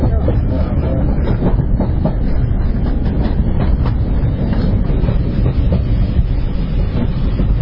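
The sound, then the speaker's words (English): A train rumbles steadily along the rails near Ramsbottom Station, loud, with a continuous low roar and faint irregular clicks and clatters from the wheels throughout. “It's quite a long train trip, really, isn't it”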